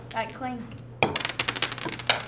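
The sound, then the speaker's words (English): A voice talks briefly, then glasses clink together in a toast to the Miami Dolphins: a sharp first strike followed by a quick flurry of bright, overlapping clinks and taps, with a low hum underneath. “That clink.”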